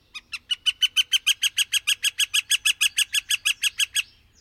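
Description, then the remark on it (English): A northern flicker (gold-winged woodpecker) gives its long, loud April call announcing its arrival, a rapid run of about twenty sharp, evenly spaced notes that start quickly and hold steady, ringing out clearly with no other sounds around. “He announces his arrival by a long, loud call repeated from the dry branch of some tree or a stake in the fence.”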